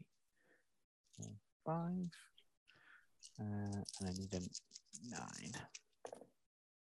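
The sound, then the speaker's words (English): Five dice being rolled clatter with a quick burst of small clicks and rattles, mixed in with someone talking over the sound. “I get 5 dice.”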